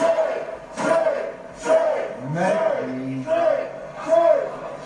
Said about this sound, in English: We start things with Seth Rollins and Murphy, the Murph, and the crowd starts chanting shame. Yeah. As Seth got in the ring. Shame. Take a listen.